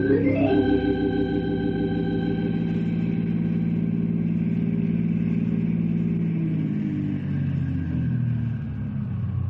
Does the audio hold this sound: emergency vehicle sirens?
no